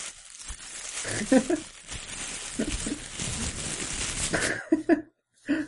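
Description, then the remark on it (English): A voice mimics a crinkling plastic bag with the mouth, imitating the crinkly noises of a chiropractor working on either side of the spine, producing a sustained, noisy rustle of crackles and hisses lasting several seconds, with a brief pause near the end before a final burst. “It sounded to me like the noise you would make if you were, you know, just like taking a plastic bag and just.”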